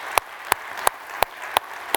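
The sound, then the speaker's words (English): Applause for those at the new Pewaukee campus, heard as six crisp, evenly spaced claps at a steady slow beat, fairly loud against a quiet background, with no voices. “Let's just give them a round of applause over in Pewaukee.”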